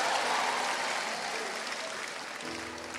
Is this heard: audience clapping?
yes